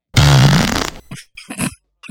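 A loud, buzzy auto-tuned fart sound effect lasting nearly a second with a wavering, pitched tone, followed by a few shorter sputtering bursts that trail off.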